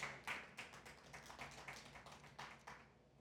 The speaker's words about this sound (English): We clap, but do we do that?